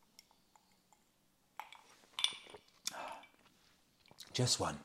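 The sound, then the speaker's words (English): Quiet sipping of banana liqueur over one ice cube from a glass, with a few soft slurps and small glassy clinks spread over several seconds, ending in a louder burst of mouth and glass noise. “One more sip of banana liqueur.”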